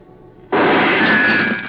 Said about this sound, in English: I hit the floor fast. The shot had come from over near the door.